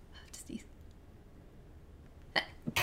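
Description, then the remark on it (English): A quiet, muffled sneeze bursts out near the end, followed by a smaller catch of breath, after soft whispery breathing and a long hushed pause. “Bless you.”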